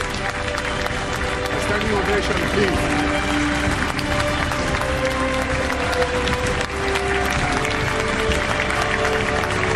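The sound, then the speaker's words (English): An audience, all rising to their feet, applauds Lionel Messi steadily for the full ten seconds, a dense, even wash of many hands clapping at once, with some voices mixed into the crowd noise. “All those in attendance rise to applaud.”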